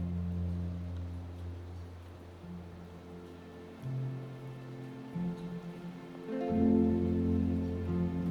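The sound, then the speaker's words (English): Steady, gentle rain falls outside with a soft continuous patter, while a low droning hum underneath shifts pitch a few times. No one speaks. “Listen to the gentle rhythm of the raindrops outside.”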